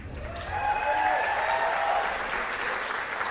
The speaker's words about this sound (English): I don't know if that applause means weird or not. What does that mean?